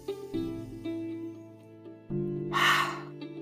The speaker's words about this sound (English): Ready? Okay, breathing in. Exhale. That's one. Breathing in. Two. Breathing in.